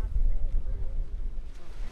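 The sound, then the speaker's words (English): Gentle waves wash against the shore at Mexico Beach, a sugar-white sand beach, in a steady, low rumbling wash of water, with wind buffeting the microphone throughout and no clear voices. “Today at Mexico Beach, sunbathers dot the sugar white sand, waves gently lap the shore, and children play in the surf.”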